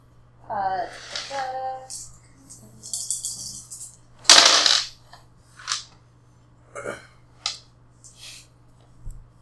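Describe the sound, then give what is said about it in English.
Dice clatter across a hard table during a game, one loud rattling tumble followed by several sharp, scattered clicks as they settle, rolling a 4. A brief murmured voice comes just before. “Okay, then I need to roll. That was a good one, too. I rolled 4.”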